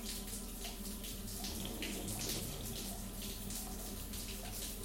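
A steady rush of running shower water fills the whole clip, a continuous hiss with splashing bursts and no voices.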